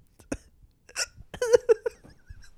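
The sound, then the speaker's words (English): A few sharp hiccups, brought on by laughing too hard, jump out irregularly over about two seconds, mixed with brief breathy laughter-like bursts, with quiet pauses between them. “Is this staying in the part where I realize I have hiccups?”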